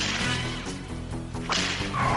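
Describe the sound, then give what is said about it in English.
A single sharp whip crack snaps out midway through loud, driving orchestral music in the trailer for an all-new Lilo and Stitch movie. The music keeps playing steadily beneath and after the crack. “I don't remember the whip.”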